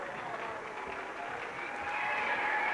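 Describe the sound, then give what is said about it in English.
Steady applause from a large crowd of Maverick fans in a basketball arena, applauding the Maverick women's team at the end of a game against Westminster: a dense wash of clapping that swells slightly louder toward the end, with faint crowd noise and a voice underneath. “And a nice round of applause from the Maverick fans for the work of this team tonight against Westminster.”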